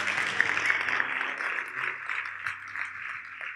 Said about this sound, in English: Somebody say amen and clap your hands one time. Come on. Come on, everybody. Y'all ain't making any noise in here.